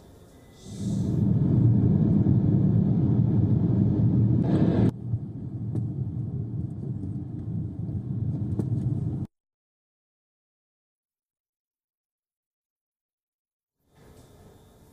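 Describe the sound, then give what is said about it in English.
Russian tanks and military vehicles rumble past as ground units cross over from Crimea and Belarus, a loud, deep engine roar that fills several seconds, then cuts off abruptly into silence before faint noise returns at the very end. “And two, Russian ground units started crossing over. We're talking about tanks, soldiers, and military vehicles.”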